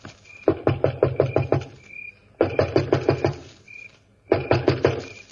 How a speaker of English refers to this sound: Stand where you are, and I'll go knock on the door.